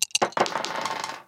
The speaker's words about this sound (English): All right, so I'm going to roll these dice.